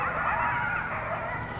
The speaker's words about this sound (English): That's a coyote.